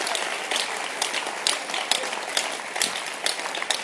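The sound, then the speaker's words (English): A crowd at a church conference claps hands together in a steady, dense burst of applause, many overlapping claps filling the space at a fairly loud, even level throughout, with no voices standing out. “Clap your hands.”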